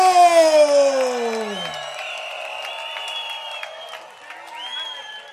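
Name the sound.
crowd cheering and applauding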